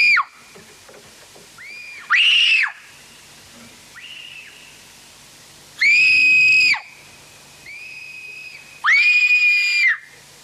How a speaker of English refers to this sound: take turns screaming, but again, it's like as a kid screams, like.